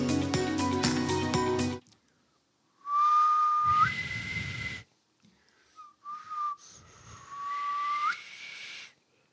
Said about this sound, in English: Not everybody can do the dad whistle. I don't know how to whistle. I've never been able to.